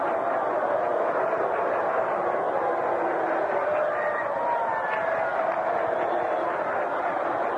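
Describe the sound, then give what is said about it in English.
A Philadelphia baseball crowd booing after being told tomorrow is Sunday, a steady, unbroken roar of many voices that holds at a constant loud level for the whole stretch, with no single voice standing out. “Philadelphia fans, as they're wont to do, booing.”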